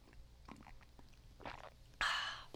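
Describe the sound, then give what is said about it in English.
A couple of soft sips from a drink, the second a louder, longer slurp, with quiet pauses between and no one talking. “hold on, sip, sip.”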